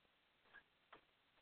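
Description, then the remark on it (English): Two soft, sharp clicks about a third of a second apart as someone types on a keyboard, over a faint steady hiss with no voices. “as you can hear, I'm typing.”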